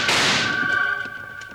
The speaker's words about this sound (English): Just as Wild Bill and Jingles started to help Tommy Brown round up his two calves and head for home, a rider came thundering toward them with his rifle blazing. Jingles was quick to return the fire.